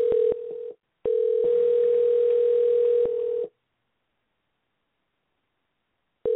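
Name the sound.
telephone dialing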